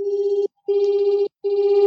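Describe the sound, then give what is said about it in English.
A steady, low-pitched binaural beat tone plays alone in three long, even bursts broken by brief silences, its loudness wavering slightly in a gentle pulsing throb. “So let's say the binaural beats sound like unmasked.”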